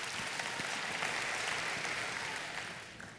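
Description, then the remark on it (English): An audience breaks into sustained applause as a hand clap of praise to God, a dense, steady wash of many hands clapping at once that holds strong for a few seconds before tapering slightly at the end. “Come on, give God a hand clap of praise if you believe that he's worthy in the nations.”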